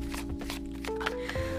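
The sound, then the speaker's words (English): Playing cards being shuffled live, heard as a handful of quick, papery riffling bursts at irregular moments, sitting over steady sustained background music with no one talking. “You hear live shuffling right now if you hear it.”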